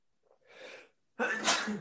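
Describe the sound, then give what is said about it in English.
A single loud sneeze: a rising breathy inhale builds for about a second, then a brief pause before the sharp explosive burst that trails off. “Sneeze attack. There's more coming.”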